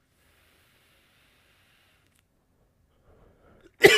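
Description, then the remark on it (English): A single sharp, loud cough bursts out near the end after a few seconds of near silence with faint low rustling. “Because nobody wants to hear you cough.”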